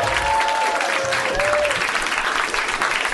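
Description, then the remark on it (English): An audience breaks into steady applause, dense clapping filling the whole stretch at an even loudness, with a few faint whistle-like tones early on and no one speaking over it. “Let's give a really, really heartfelt round of applause”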